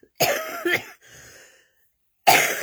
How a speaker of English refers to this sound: Including coughs.